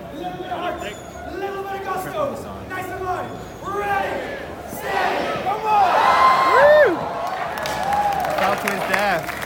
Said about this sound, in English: And they all cheer.